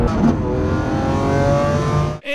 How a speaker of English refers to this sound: Oh, this car! I am driving a 2020 Lamborghini SVJ. This car, watch this. Oh! 115 mile an hour turn, like it's nothing.